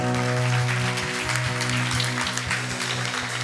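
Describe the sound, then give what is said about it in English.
Steady applause from a church audience for a pastor, dense clapping from many hands at a constant loudness, with a low sustained musical tone humming underneath. “Why don't you guys give him another round of applause?”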